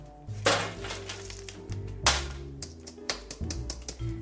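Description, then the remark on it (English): Seeds are spread across a parchment-lined baking sheet in a busy, crisp rattle of tiny clicks and taps, with a few louder scattering bursts over a low steady hum and no talking. “So what I've done is I've lined it in a piece of parchment paper and I'm going to spread the seeds out over it.”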